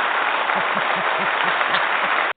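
A burst of dense crowd applause sound effect played for a birthday, loud and steady throughout, with no voices, ending in an abrupt cutoff after a couple of seconds.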